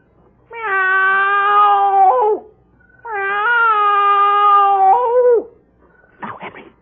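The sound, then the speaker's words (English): A man's voice imitates a cat in front of his house, giving two long, drawn-out meows, loud, each sliding down at the end, with a brief rustling noise just after. “Now, I meow twice.”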